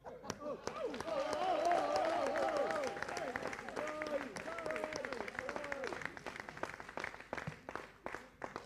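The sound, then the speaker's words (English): An audience claps steadily while voices murmur and call out underneath; the dense applause is loudest early on, then thins toward scattered, sharper individual claps near the end. “Why do you need to clap?”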